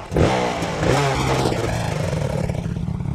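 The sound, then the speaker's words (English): A Honda-matic motorcycle engine roars down a dirt road, revving hard and steady with a low rumbling drone and rattly mechanical clatter, no voices over it. “He jumped off the motorcycle in a cloud of dust and ran toward me.”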